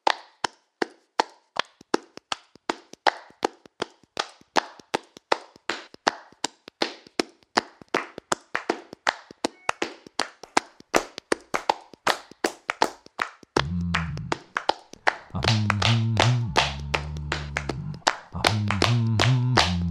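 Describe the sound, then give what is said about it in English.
Steady rhythmic hand clapping and tapping, dozens of sharp, crisp strikes in a lively beat, joined near the end by a low, sustained tonal sound. “Clapping, clapping, clapping. Can you clap your hands? Tapping, tapping, tapping.”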